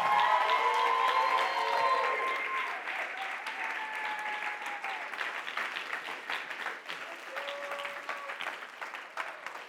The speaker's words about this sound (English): And tonight, I have the privilege of sending out a team to Dubai, United Arab Emirates. So if you're on that team, come on up, wherever you are. Let's clap for them.